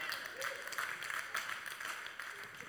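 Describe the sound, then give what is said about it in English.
Scattered, light clapping from a small number of people, uneven and fairly soft, continuing for a few seconds with no one speaking over it. “Not many claps in the room, because some of you have never even read this chapter.”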